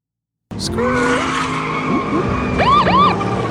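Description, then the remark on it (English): Two vehicles peel out, their engines roaring steadily after a brief silence, joined by sharp, high-pitched tire screeches that rise and fall in a couple of quick squealing bursts near the end. “The siren sounded as two vehicles peeled out and in front of Shinto's SUV to block them in right on time.”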